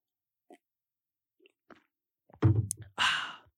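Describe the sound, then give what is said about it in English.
Someone drinking water: a few faint sips, then one deep, low gulp followed by a loud, breathy exhale like a satisfied sigh. No one speaks. “Drinking water. 1 second.”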